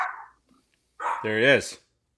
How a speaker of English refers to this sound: He barks. It's hurting him, so he hasn't been barking as much the last couple of days.